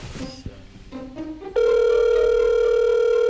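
An outgoing phone call: a few short electronic beeps and tones, then a loud, steady ringback tone that starts abruptly and holds unbroken to the end.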